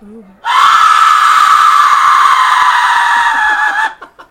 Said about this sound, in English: Okay, so I'm gonna lean back a little bit and fire up the old Aztec Death Whistle. So everybody, prepare yourself. He's gonna put his mouth on it. Here we go. And blow.